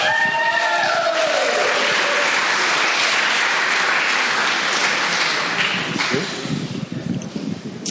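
A crowd bursts into loud, sustained applause with some cheering for a speaker being introduced, a dense wash of clapping that holds steady for several seconds before thinning out and tapering off toward the end.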